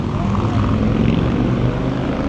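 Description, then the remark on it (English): A motorcycle drives by, its engine droning loudly and steadily, a low rumbling roar with a buzzing edge that holds at constant volume throughout, with no voices over it. “I couldn't hear you because there's a motorcycle driving by, but it's okay.”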